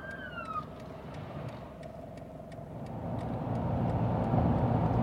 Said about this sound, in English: Ambulance coming up the rear.